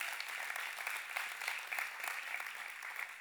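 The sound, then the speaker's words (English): An audience claps steadily, a dense, continuous patter of many hands with no voices rising above it, holding an even loudness for the whole few seconds. “Come on, you can clap it out if you want to.”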